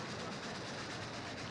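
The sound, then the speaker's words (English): A train slows along railway tracks, a dense, continuous roar of wheels and carriages with a faint rhythmic clatter, fairly loud, with no voices. “But as the train slowed and the smoke cleared, I saw long scratches along the lengths of the carriages, deep into the metal.”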